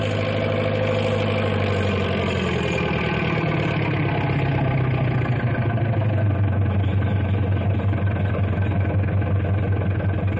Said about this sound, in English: Oh, who's Big Brute? That big double caterpillar tractor is Big Brute. That is a monster piece of machinery.